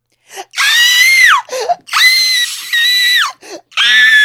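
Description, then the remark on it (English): A voice imitates how a man flying a biplane crop duster screamed like a woman: a shrill, high-pitched scream in three long, loud bursts, each sliding down in pitch at the end, with short ragged breaths between them. “That is exactly how this biplane crop duster man screamed to his doom.”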